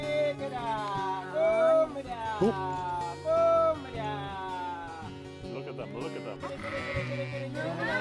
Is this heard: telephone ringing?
no